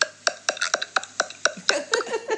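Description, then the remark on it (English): A man's voice imitates water pouring as a sound effect, with a quick, steady series of throaty glugging pops, roughly four per second, at moderate loudness with no other talking. “Sound effects, he's pouring water.”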